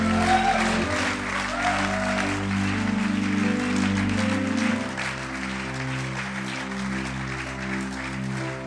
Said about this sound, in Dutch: Well, we're about to go crazy and give God a huge clap offering. We gaan zo helemaal los en geven God een groot applaus. Laten we doen.